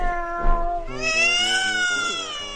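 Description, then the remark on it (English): A cat meows in a long, drawn-out, insistent call with a wavering pitch that rises and falls, loud, with no other sounds around it. “Here, kitty, kitty, kitty, kitty.”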